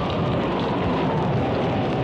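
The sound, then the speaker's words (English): A violent storm at sea about 40 miles north of Tahiti roars steadily, heavy rain hissing across the whole clip with a deep low thunder rumble underneath, loud and continuous for about two seconds with no voices. “Once I turned it around for him, we headed south, and about 40 miles north of Tahiti, we encountered a violent storm.”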